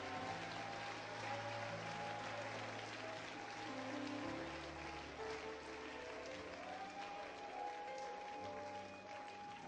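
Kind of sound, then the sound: crowd, audience clapping hands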